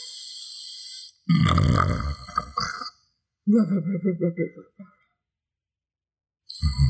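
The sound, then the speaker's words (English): A person's voice imitates a man's gentle, decorous snoring: two drawn-out, rumbling snore sounds with a raspy, fluttering texture, separated by a short pause, fairly loud. “That's me trying to snore decorously.”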